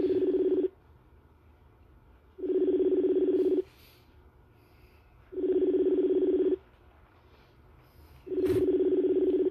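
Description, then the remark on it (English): A telephone line tone sounds four times in an even rhythm as a call is placed, each a steady, low-pitched hum lasting about a second with pauses between, and no voices over it. “Let's call this nigga right quick.”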